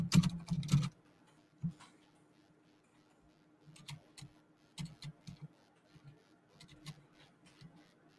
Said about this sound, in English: I was typing.